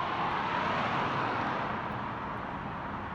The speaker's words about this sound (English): I remember when I first noticed this traffic, and how intrusive and distracting these noises could be.